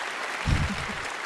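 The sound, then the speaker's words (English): A brief burst of audience applause, a dense, steady crackle of many hands clapping with a low thump partway through, moderately loud and with no voices. “Clap it up. Clap it up.”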